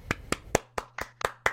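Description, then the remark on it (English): A short burst of hand claps welcoming a guest speaker on a sports show, seven sharp slaps in an uneven rhythm, fairly bright and crisp, with no voices over them. “Give it up for”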